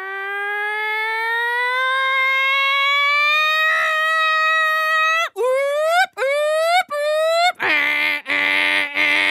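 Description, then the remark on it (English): A voice imitates a fire engine siren, first a long steady wail that slowly climbs in pitch, then several quick rising whoops, ending in a buzzy, pulsing blare. “Okay, fire engines usually are a little too exciting for me, but I'll do my best.”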